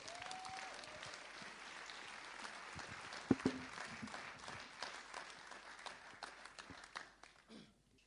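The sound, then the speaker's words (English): An audience at a morning gathering in Long Eaton applauds steadily for several seconds as a guest speaker comes up to speak, dense clapping tapering off near the end, with no speech over it. “So let's give him a big round of applause as he comes to share and speak this morning.”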